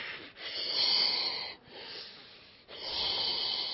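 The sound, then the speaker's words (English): A voice imitates the scuba regulator breathing of a diver on a tank with face just in the water: three long, harsh, hissing breaths drawn in and pushed out, fairly loud, separated by brief pauses, with no talking. “I get in, and I'm on the tank, and my face is only about this far in the water, and I'm breathing.”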